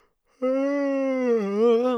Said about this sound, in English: The yawns are back. You know, that's a staple of this podcast. Sorry.